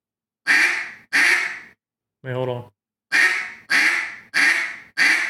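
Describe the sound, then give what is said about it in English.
Six loud, raspy quacks blown on a duck call to demonstrate a quack and boss call: two quick ones, a brief spoken interjection, then four more in an even rhythm. “Okay, now do a quack and boss.”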